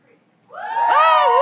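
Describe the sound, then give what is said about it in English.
A few voices let out a rising, sustained cheer, imitating the roar of a crowd; it swells in after a brief quiet start and stays loud until the end. “Crowd noise.”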